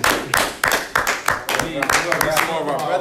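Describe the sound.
Steady, rhythmic audience clapping, about three sharp claps per second, loosening into denser, overlapping applause while voices talk and cheer underneath.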